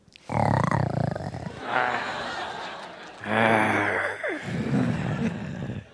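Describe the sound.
At a film Q&A, two people asked to growl take turns making loud, rough growling noises with their voices, imitating an animal, in several sustained bursts broken up by bits of chuckling.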